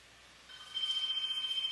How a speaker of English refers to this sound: Pick up the phone. Pick up the phone. Pick up.